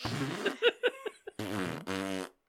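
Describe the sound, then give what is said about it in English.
A series of loud fart noises: a few short sputtering bursts, then two longer, buzzy, drawn-out blasts in quick succession, with no talking. “Yeah, because farting, it's a thing.”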